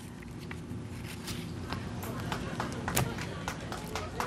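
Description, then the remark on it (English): Employees on the ground clap steadily with scattered cheers as a crewed space capsule deploys its parachutes, a dense patter of sharp hand claps over a low background murmur, continuous throughout. “You can hear the clapping on the ground here. You have employees clapping and cheering.”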